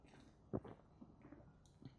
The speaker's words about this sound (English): Oh, just a big old gulp down. It is such a great pale ale because it's not too hoppy.